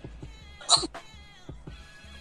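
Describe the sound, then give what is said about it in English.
A sharp sneeze bursts out once, sudden and breathy, followed by a brief faint catch, over a soft steady rhythmic thumping in the background. “Sorry, I had a sneezing fest.”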